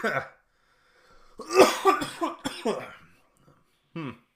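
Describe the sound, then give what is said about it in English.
A loud fit of coughing: several harsh, rapid coughs bunched together in the middle, with brief voiced sounds just before and after. “Well, at the risk of having anybody have to listen to my coughs anymore, we're going to get out of here.”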